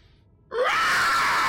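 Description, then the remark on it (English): After a brief hush, a piercing siren wail bursts in loudly, its pitch sweeping upward and then holding as a harsh, sustained high shriek that echoes through the room. “as the siren sound is echoes through the room.”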